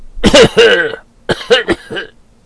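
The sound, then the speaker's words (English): A woman's dry, rattling cough comes in two harsh fits: a pair of loud hacks, a short pause, then three or four raspier coughs trailing off. It's clear, with no talking. “And coughs in confirmation horribly.”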